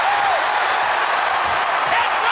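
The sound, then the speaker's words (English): A large wrestling crowd roars and cheers without letup as Sable hammers Luna in a catfight, a dense, loud wall of voices and noise that holds steady from start to finish with no clear break or single voice standing out. “Sable is hammering Luna, and this crowd is going absolutely crazy here.”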